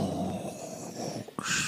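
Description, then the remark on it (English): A voice mimics heavy respirator breathing in the style of Darth Vader: a long, rasping inhale followed by a sudden, hissing exhale, fairly loud and with no talking. “That was exactly Darth Vader breathing.”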